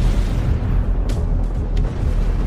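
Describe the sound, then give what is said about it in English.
Massive nuclear explosives detonate at three smaller incoming ships in a deep, sustained roaring rumble that stays loud throughout, with a few sharp crackling bursts flaring up partway through. No voices are heard. “I launched nuclear explosives at the vessels and ordered them to detonate.”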